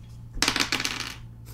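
A quick clatter of seven dice tumbling across a hard tabletop, a burst of bright rattling clicks lasting under a second before settling, fairly loud with no talking.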